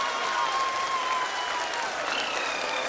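A large crowd at Mission Control in India applauds steadily as the Chandrayaan-3 lunar lander touches down on the moon, dense clapping with sustained cheering energy, with a faint thin whistle-like tone drifting above the noise.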